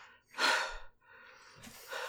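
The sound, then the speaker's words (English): Heavy, breathless panting: a loud rushing gasp, a softer exhale, then another strong breath, like someone winded after exertion. No talking. “I'm kind of breathing hard.”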